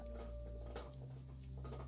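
Soft, irregular crunching and nibbling, like a small pet chewing dry food, with a few sharper crackles over a steady low hum. It is quiet, and no one speaks.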